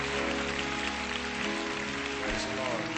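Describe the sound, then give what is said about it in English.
Steady audience applause for the people who just took part, a dense, continuous patter of many hands clapping at fairly even loudness, with some low background hum and murmuring underneath. “Alright, let's give a lot of clap again for these guys.”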